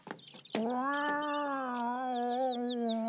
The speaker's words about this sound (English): That must be the watch cat. I shouldn't laugh. The cat that would be a dog.